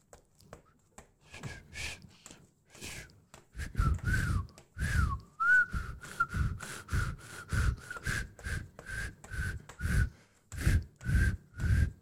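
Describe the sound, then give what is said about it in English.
Someone imitates crickets by whistling through lined-up saliva: a long run of short, breathy, mid-pitched chirps, sparse at first, then settling into a steady, fairly loud rhythm of about two per second. “That's the best goddamn cricket impression I could do.”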